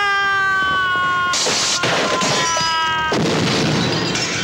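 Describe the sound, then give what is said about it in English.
A drawn-out wailing cry gives way to a string of loud crashing smashes as a stuntman falls four stories off a roof through a light box sign, shattering it, with debris clattering in repeated bursts. “And it is an amazing stunt where he falls off this roof through a sign and just like smashes.”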